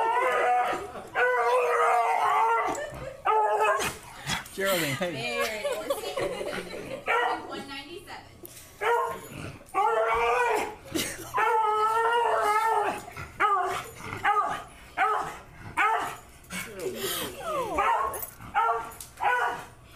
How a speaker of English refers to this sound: And this is the clip from that YouTube video. This is a dog.